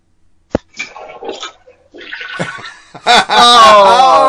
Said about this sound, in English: That sounds like a big turd that was being flushed down there, too.